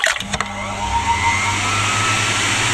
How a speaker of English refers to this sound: That's amazing. It's a warm air hand dryer. Useless in a fight, but stops chapping.